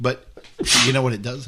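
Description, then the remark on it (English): A single sharp, noisy sneeze bursts out in the middle of a man's spoken question, briefly overlapping his voice before the talking carries on. “Bless you.”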